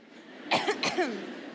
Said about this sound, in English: Could you all just like clear your throat with me?